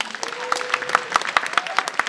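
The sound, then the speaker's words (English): An audience breaks into a short round of applause as a quick poll of who is afraid of bugbears and hobgoblins, a dense patter of many hands with a few sharper claps landing in a steady rhythm, fairly loud and lasting about two seconds. “Round of applause. How many people are afraid of bugbears and hobgoblins?”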